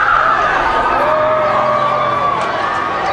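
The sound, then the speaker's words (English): A dense crowd of Michael Jackson's fans cheers and screams without pause as he waves and walks out of court, a loud, steady roar threaded with high-pitched shrieks and wails that hold across the whole moment. “We're on pictures of Michael Jackson waving to the crowd, walking out, and the crescendo grows from his fans.”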